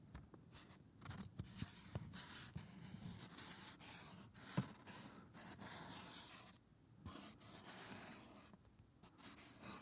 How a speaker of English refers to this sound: Hand to me, and decapping soon I shall be. Paper writing close to tis ear, the sound of my name shall now disappear.